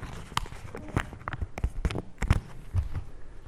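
Heavy feet stomp repeatedly on a £10 banknote dropped in the dust, a quick irregular series of thudding impacts with gritty scuffs between them, and no one speaking.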